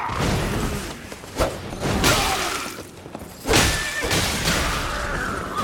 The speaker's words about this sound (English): Ooh, the horse kicked us that time. Well, almost. The horse tried to kick us that time.